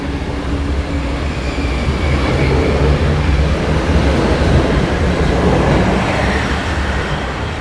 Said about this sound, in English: Yeah, I have to pay to get in there, and train is ready to go to, let's see, Albuquerque, New Mexico. They're closing the doors now, and they're on the way.